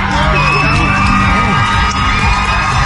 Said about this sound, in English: Now, the crowd's cheering for her, but how many of those people cheering were probably just taking a selfie?